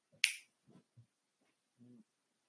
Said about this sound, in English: Sorry, dog is chewing on something.